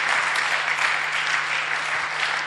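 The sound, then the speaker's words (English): An audience claps their hands in steady, dense applause, a continuous crackling wash of many hands at an even loudness, with no voices standing out. “Clap your hands.”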